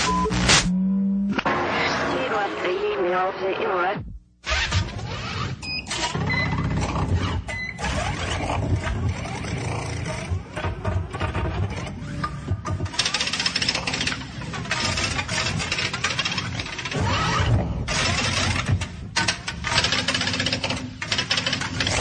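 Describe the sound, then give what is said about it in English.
Rapid typewriter typing clatters on almost nonstop for about twenty seconds, loud, with only a brief pause early on and a dense, busy background beneath the keystrokes; no one speaks. “Visual interlude here, showing a typewriter.”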